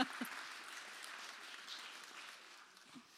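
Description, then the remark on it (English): An audience claps steadily for a few seconds, applauding themselves after roaring together, a dense patter of many hands, fairly soft and fading slightly toward the end with no voices. “Give yourselves a round of applause. Come on, give yourself a clap.”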